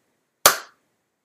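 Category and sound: human body sound, single hand clap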